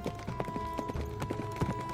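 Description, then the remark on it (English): Horse hooves clip-clop in a steady, uneven patter, several sharp knocks per second as guards lead horses out of a yard through an opened gate, over a faint constant hum. “the gate was opened, and Gawain and the guards led the horses out from the yard”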